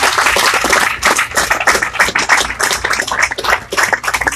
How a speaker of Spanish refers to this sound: ¿Cuántos dicen amén? Aleluya. Aleluya, dele palmas al Señor.